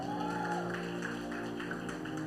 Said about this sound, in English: Let's give a round of applause to our awesome, awesome worship team.